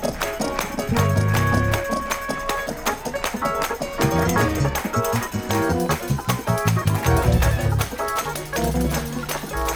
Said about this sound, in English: I'm gonna show you how to do it in the old school. They clap like this.